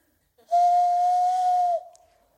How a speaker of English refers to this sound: This was her call. And we'll see how good. She was very good at this. Not me. Anybody know about the hand whistle? Yeah? Okay, let's see how I do this. I kind of failed at the last service. We'll see. Something like that.